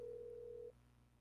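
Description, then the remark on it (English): A steady electronic phone tone hums for just under a second, clear and fairly loud, then cuts off, leaving a quiet background hum. It is an outgoing call ringing out as a woman is being phoned. “I'm calling her.”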